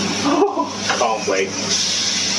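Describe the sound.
A steak sizzles steadily in a pan, a dense, bright crackling hiss that runs unbroken through the whole clip while a person talks briefly over it.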